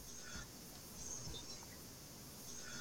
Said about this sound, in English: You can actually hear crickets in the background during the conversation.